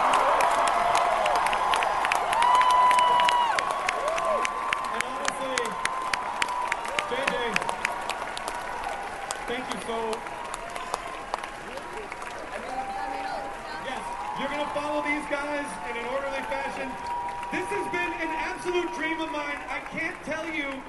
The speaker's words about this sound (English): Would you please leap to your feet and give me yes! a huge round of applause for the Star Wars The Force Awakens.